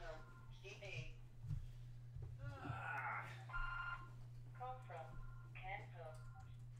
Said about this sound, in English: See, this is what happens when I record inside my own home and don't turn off my damn phone. That is the landline, and who on earth is calling me at this hour?